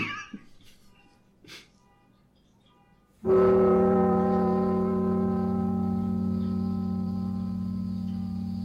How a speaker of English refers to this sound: The car horn in the back is not part of the album. My goddamn apartment.